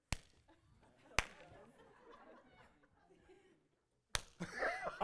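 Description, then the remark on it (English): Three sharp, loud hand claps on the second and fourth beats at BCC land at uneven intervals over a low murmur of voices, with the last clap followed by a burst of louder crowd noise. “Hey, you know, it's funny in BCC, because you know when we all start clapping, you know we like multi-ethnic up at this point, right?”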